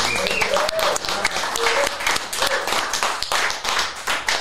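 A crowd breaks into a round of applause, dense overlapping claps holding steady and loud throughout, with a few faint voices and whoops mixed in.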